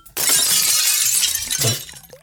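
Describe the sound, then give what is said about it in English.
Glass milk bottles of a milkman delivering milk rattle and clink together in a loud burst that starts abruptly, keeps up for a couple of seconds, then fades out, with no voices. “And there's the rattle of glass.”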